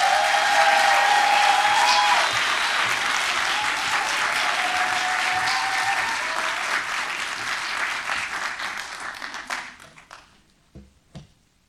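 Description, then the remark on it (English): A large crowd applauds loudly and steadily to welcome the fourth president and CEO of WRF, a dense roar of clapping hands with a few whistles or cheers early on, before thinning out into scattered last claps. “Please give a rousing round of applause to”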